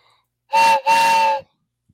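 A loud train whistle sounds twice in quick succession, a short blast followed by a longer one, steady and harmonic with a breathy hiss, standing alone with no talking.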